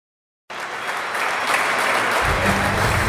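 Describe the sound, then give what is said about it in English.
A steady roar of applause and cheering starts abruptly after a short silence, and partway through a loud, sustained low stock exchange closing bell begins ringing beneath the clapping. “You just heard the bells.”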